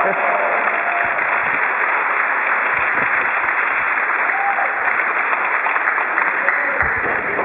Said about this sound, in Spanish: Ese es un aplauso a ustedes mismos.